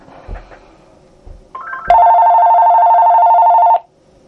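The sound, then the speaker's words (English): A few soft thumps, then a short rising beep leads into a loud, steady electronic phone ring that holds for about two seconds before cutting off abruptly. No one speaks. “I'm sorry for the phones ringing here.”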